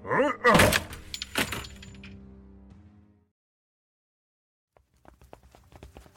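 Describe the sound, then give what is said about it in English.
A wooden door is broken down, smashed in with a couple of heavy thuds and a splintering crash that rings out and fades, then a pause before faint footsteps. “can you break down the door?”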